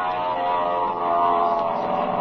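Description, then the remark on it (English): An airplane diving low overhead at the onlookers, its engine a loud, steady droning roar with a thick buzzing tone that holds without a break for a couple of seconds, with no voices. “He handles the ship like a veteran. Well, here he comes now. Diving at us.”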